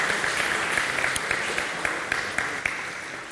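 An audience in a church claps steadily, a dense wash of many hands with sharp individual claps standing out now and then, sustained at an even level throughout with no voices.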